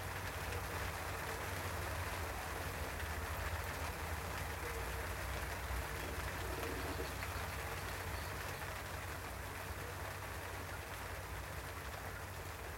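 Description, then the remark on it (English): Rain patters steadily on the cabin roof of a boat at night, a dense, even hiss of countless drops that holds at a constant moderate loudness from start to finish, with no voices. Water drips from the gunwales with erratic metallic plinks into the water below. “I lie in bed, listening to it patter on the cabin roof, dripping from the gunwales with the erratic metallic plinks into the dark night waters below.”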